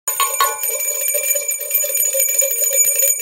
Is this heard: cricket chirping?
no